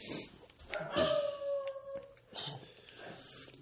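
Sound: dogs howling and whimpering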